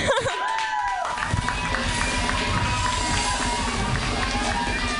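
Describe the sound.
An audience claps steadily, a dense wash of many hands that holds at an even level for several seconds, with scattered cheers and crowd voices mixed in.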